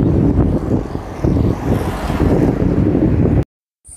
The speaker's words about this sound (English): So the Trans-Gambian Highway, and there's buses going by, cars and trucks.